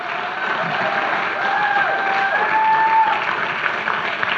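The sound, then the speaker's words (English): A crowd claps steadily for Pastor Jeff and Robbie for several seconds, a dense, continuous wash of applause at an even loudness, with a few faint whistles or cheers rising briefly through it. “So can we just give a round of applause for Pastor Jeff and Robbie?”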